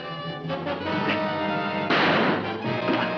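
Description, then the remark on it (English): A loud, violent smashing crash bursts out midway through, lasting about half a second over sustained, dramatic orchestral music, with a smaller impact following just after, in a movie trailer as the Fly smashes anything that stands in his way. “Smashing anything that stands in his way.”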